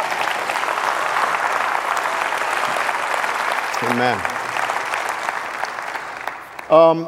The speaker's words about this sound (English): Can you give a big victorious applause to God for what God has already done in your life?